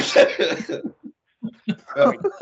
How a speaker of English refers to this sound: I'm going to have a coughing fit, so you tell everybody what came up.